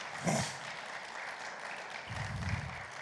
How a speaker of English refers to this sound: Let's applaud the Lord Jesus Christ for that, if you don't mind.